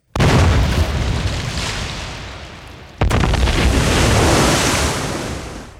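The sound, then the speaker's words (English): Two massive, booming explosions of torpedoes fired by a Turkish destroyer hitting the British ship Goliath at 0100 hours, the first from the start and the second about three seconds later, each followed by a long roaring rumble like surging water, loud with no voices. “Many of the men aboard the Goliath were awoken by this thunderous explosion and shaking of the ship.”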